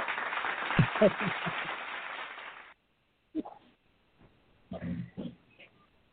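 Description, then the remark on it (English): A short burst of dense, hissy applause sound effect played on a radio station show, lasting under three seconds, then cutting off abruptly, followed by a few quiet bits of talking. “I'm gonna throw some claps on it for that.”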